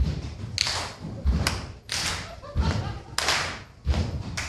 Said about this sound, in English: I need you guys to do me a favor because I want to dance. I want interest music when I'm coming on stage. So if everyone can help me out just a little bit, and stomp and clap for me, just.